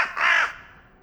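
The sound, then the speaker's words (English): A single harsh crow caw rings out, loud and raspy, then fades into a quiet tail with no other sounds. “Oh my God, I am talking to a crow.”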